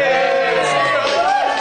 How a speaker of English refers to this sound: Well, thank you very much to the Billericay School. And they are so keen, we are actually going to round this whole thing off with another fantastic cheer from this school.